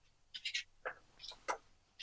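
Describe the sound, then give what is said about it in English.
Soft, quick bird chirps and twitters come in short bursts over a quiet background, with faint fluttering in between. No one speaks. “Slowly, the sky filled with birdsong and the rustle of painted wings.”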